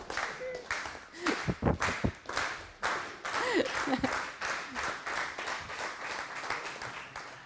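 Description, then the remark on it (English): An audience claps together in a fairly steady, rhythmic beat, sharp and loud throughout, with a few voices calling out faintly underneath, cheering a woman on. “We need a clap coordinator”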